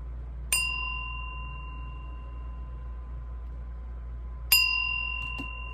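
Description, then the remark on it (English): A meditation bell is struck twice to begin a meditation, about four seconds apart, each strike ringing out clearly with a long, pure sustained tone over a faint low background hum. “I'm going to ring the bell, and then I'm going to instruct you on the healing breath, and then we're just going to do open awareness practice the whole time, okay?”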